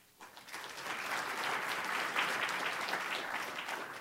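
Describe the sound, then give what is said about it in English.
A crowd breaks into sustained applause at the end of a talk, a dense wash of many hands clapping that swells quickly and holds steady at a strong level, with no voices standing out. “And your thunderous applause, too.”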